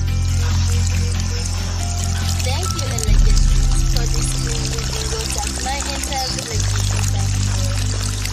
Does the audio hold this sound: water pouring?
yes